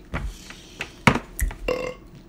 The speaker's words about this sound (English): And the burp.